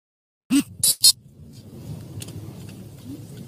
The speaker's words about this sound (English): That little beep beep noise was the obviously the cops' video camera starting up.